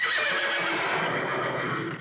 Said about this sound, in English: Yeah, I'm going to put the horse sounds in.